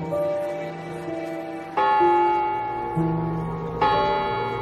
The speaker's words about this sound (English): Midnight. The clock struck 12, and people threw rocks at it.